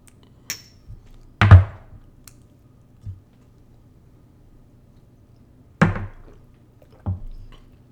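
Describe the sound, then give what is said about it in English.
Tequila is poured into a shot glass in two short splashing bursts with light glassy taps and knocks between them. No one speaks over the sounds. “And so again, if you guys have some alcohol available to you, pour a shot, take a last call with us.”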